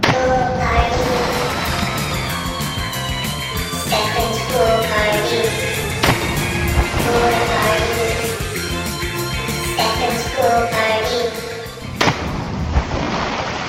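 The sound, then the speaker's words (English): A segment's busy, loud theme song jingle plays with steady beats and layered bright tones for about fourteen seconds. It is energetic throughout and cuts off abruptly near the end, with no voices over it. “she also tweeted to say how happy she was that this next segment now has a theme song, because she never has to hear me say the words splash, splash, splash ever again.”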